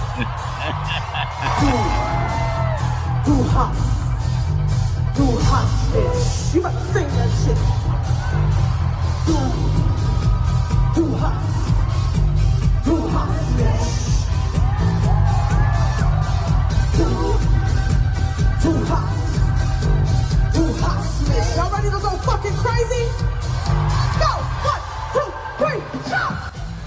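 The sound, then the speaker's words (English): A large concert crowd cheers, whoops and yells nonstop as a singer brings a band out on stage, a dense roar of many voices with a heavy low rumble, staying loud and steady throughout. “And so she said, challenge accepted, and that brought that band out on stage with her and had fun with it. And the she crowd did.”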